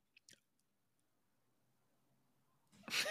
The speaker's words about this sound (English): That was my gasp. I'm so excited.